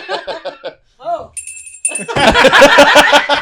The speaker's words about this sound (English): Wait, first time on and I get the shame bell? Dang. It's an honor.